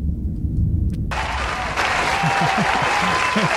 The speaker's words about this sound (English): We've been getting a lot of applause lately.